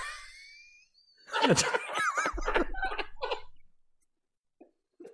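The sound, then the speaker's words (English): A strained, gulping vocal sound as someone tries to hold back a burp, with a few squeaky, choked bursts and a low rumble, followed by quiet and a couple of faint clicks. “I wish you could have seen the look on …'s face trying to hold in that burp.”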